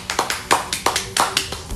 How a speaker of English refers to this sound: Give it a round of applause for yourself.